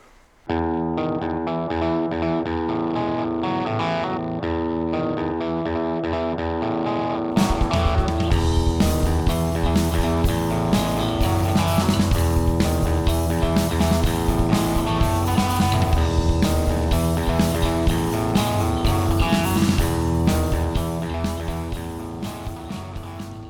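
A rock song plays with no talking, opening on a distorted electric guitar riff before drums and bass crash in around seven seconds for a loud, driving full-band section that fades at the end.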